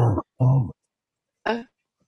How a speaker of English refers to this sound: And that cough is getting worse, ma'am. It is. It's really bad. Soon. That sounds like it's coming from inside your chest now, like deep down. Like it does. Yeah, it does. It's not a surface cough anymore. And it sounds really sore, man.